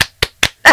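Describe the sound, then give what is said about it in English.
Brief applause: four sharp, evenly spaced hand claps, the last one fuller and longer, as if a small burst of clapping cuts off quickly. “Can we put a round of applause?”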